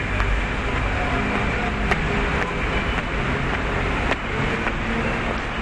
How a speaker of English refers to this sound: Something about trains and the nice gentle rocking motion makes you sleepy and want to just kind of pass out.